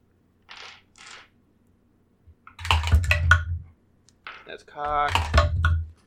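Several bursts of polyhedral eight-sided dice clattering and tumbling across a tabletop during a Dungeons & Dragons game: two short light rattles, then two longer, louder rolls with hard clicks and knocks.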